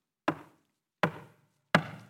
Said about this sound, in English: So she reaches the king's palace. She begins to knock on the door.